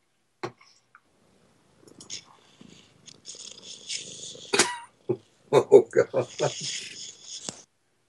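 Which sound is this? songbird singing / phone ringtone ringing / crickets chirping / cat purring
cat purring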